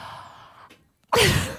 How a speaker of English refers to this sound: A gasp of amazement already.